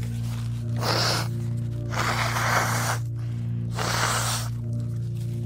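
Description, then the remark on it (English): Three forceful, breathy nose blows into a napkin, each lasting about a second with short pauses between, over a steady low background hum. “I'm just gonna blow my nose real quick, okay?”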